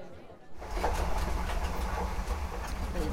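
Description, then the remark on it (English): A passenger train rolls steadily along the rails, heard from on board: a continuous low rumble with faint rhythmic clicks from the wheels, rising in loudness after a brief quieter start. “Most meals, though, are served on the train, and they're still pretty special. Let's go back on board and I'll tell you a bit about the restaurant.”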